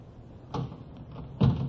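An unlocked hotel door is opened: a sharp latch clack, a short pause, then a heavier wooden thump as it swings, with no voices.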